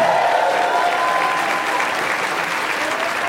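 An audience at a New York show applauds a special sit-in piano player, a steady, dense wash of clapping hands that holds at a strong, even level throughout without any voices standing out.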